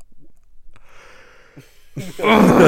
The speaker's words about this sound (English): I was really perfectly fine 10 minutes ago. And yeah, you were. Yeah, you were actually. Did not yawn once. Now you can't stop. Sorry, man. This is my 12 hours. My 12 hours is up. I've been up since 2 a.m.